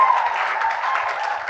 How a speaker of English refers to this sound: Give the Lord a mighty clap.